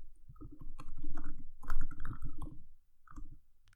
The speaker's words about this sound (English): The typing I can hear there. Better not be no Googling going on there, buddy.